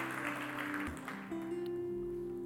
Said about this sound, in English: We do want to thank all of you for your Passover offerings. This was your most generous year, so let's give the Lord a hand clap. Praise the Lord.